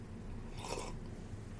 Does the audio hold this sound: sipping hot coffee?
yes